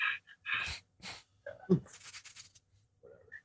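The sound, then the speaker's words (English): A person imitates a dog panting after a long run with quick, breathy huffs and bursts, fairly loud, repeated in an uneven rhythm for a few seconds. “I'm over here and, like, you know, one of those dogs that, you know, you see after like a long run, just panting, like.”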